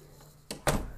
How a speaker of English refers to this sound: I'm gonna go close the door.